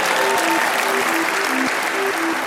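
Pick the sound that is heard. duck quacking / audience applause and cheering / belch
audience applause and cheering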